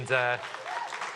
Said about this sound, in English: A round of applause for